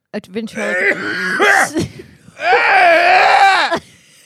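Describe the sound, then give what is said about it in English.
Exaggerated, strained coughing from one person: harsh voiced hacking with a groaning, pitched quality, in two loud sustained bouts broken by short sharp bursts and a brief pause. “That's how you cough.”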